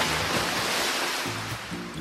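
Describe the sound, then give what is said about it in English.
A steady, continuous wash of surf rolling onto a shore, fairly loud, with a faint low hum underneath and no voices. “I wouldn't mind being on a beach in the tropics, swimming in the warm sea right now.”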